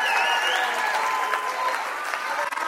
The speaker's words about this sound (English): I'm not grandstanding here tonight. I don't need the applause. He needs the applause. Give it to him tonight.